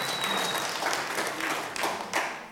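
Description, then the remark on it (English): An audience claps in steady, dense applause, many hands overlapping into a continuous crackling wash that holds at an even level for a couple of seconds with a few sharper bursts. “Yeah, you can clap.”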